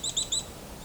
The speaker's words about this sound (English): We got some black-capped chickadee singing. So that whistle, that is their song. Not the chickadee-dee-dee part, that's a call.